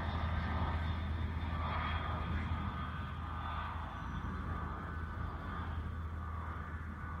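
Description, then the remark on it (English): An airplane passes overhead, the same plane flying overhead for the fourth time, with a steady, loud engine drone that fills the whole recording, holding a deep hum and easing off only slightly partway through. No one speaks. “Okay, that is the fourth time that same plane has flown overhead just like that.”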